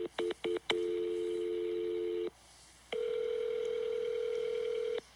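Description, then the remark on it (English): A quick run of short telephone keypad beeps as someone calls a supervisor, then a long steady dial-type tone, a brief pause, and another sustained tone, all clear with no talking. “Let me get my supervisor on the phone.”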